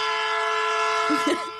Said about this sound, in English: A train horn. Brilliant.